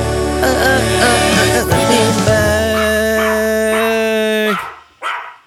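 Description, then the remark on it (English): A dog barks and yips over a bright, tuneful musical jingle with sustained harmonic tones, the music cutting off abruptly near the end before a final short sound. “I love that jingle, especially the dog.”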